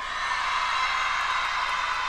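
A large crowd at a college graduation at Texas Southern University in Houston cheers and screams wildly as a graduate accepts her diploma, in a dense, unbroken roar that stays loud and steady, with whoops rising above the din and no clear speech.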